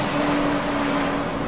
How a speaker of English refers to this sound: I'm sorry, there's a huge truck going by.